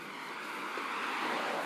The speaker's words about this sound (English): And my thing is, it's another truck coming.